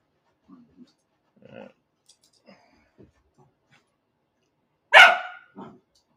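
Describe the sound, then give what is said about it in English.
A dog makes a few soft, scattered yips and snuffles, then lets out one loud, sharp bark, followed quickly by a shorter, quieter bark. “If the dog goes crazy.”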